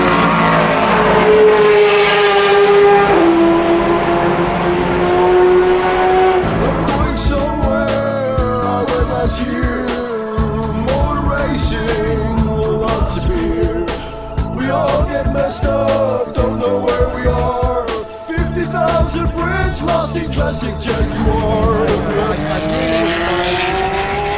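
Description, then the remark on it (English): Race cars roar past on a track, the first engine note sweeping downward as it goes by, followed by a loud, dense stretch of overlapping, crackling engine noise that barely lets up. “Truth is, we love all the cars out there.”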